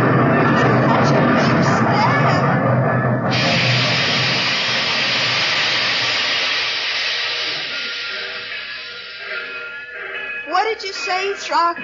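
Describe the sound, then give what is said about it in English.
A steam train pulls in with a loud, dense roar of hissing steam over a low rumble that gradually eases off, and voices briefly break through near the end. “Did you hear what I was saying just before the train came in?”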